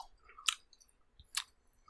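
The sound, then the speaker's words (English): Wet chewing on a sticky Abba Zabba candy bar of white taffy with peanut butter, with two sharp smacking bursts about a second apart and soft mouth noises between them, no talking. “And just some surrounded in just a weird rectangle of white taffy. That is all the way in all of my teeth right now.”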